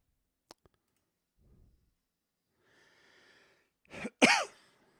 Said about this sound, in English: Yeah, again, sorry for the coughing. I'm getting over this stuff